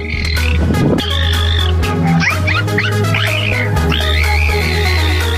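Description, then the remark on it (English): A dolphin chatters and laughs in a string of squeaky, rising and falling whistles, with a short burst of rapid clicks near the start, loud over a steady low background hum. “Here's a dolphin laughing to end the clip, so it ends on a high.”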